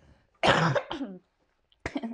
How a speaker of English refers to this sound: As I have a fucking cough.